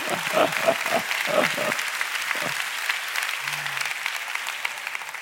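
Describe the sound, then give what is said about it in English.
A church audience claps for the Lord during a sermon in a dense, steady burst of applause that fills the whole clip, with a few brief voices and a low hum poking through underneath. “Give the Lord a big clap.”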